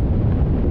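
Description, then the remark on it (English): A deep, steady roar of a big chunk of glacier ice breaking apart from Greenland, a loud low-pitched rumble that holds without pause through the whole brief moment, with no voices. “This is the sound of a big chunk of ice breaking apart from Greenland.”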